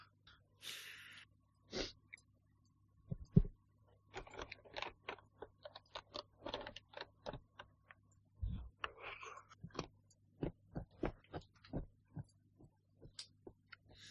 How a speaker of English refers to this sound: You know what? I'm going to call him, and I'm not even going to stop chewing on my food.